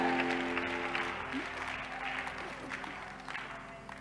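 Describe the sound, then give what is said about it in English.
Steady applause from a church audience in the Upper East region, a dense patter of many hands clapping at moderate volume, with a faint sustained tone and some murmuring underneath. “You are clapping like you are not a member of this house.”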